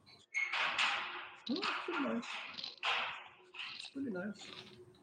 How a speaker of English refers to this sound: I have a metal gate. Let's see what that sounds like.